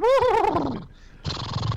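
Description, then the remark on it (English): A horse whinnies loudly with a shaky, falling, vibrato-like call lasting under a second, followed after a short pause by a breathy, noisy snort. “Oh, wait, I'm sorry, you said horse. This is where I go.”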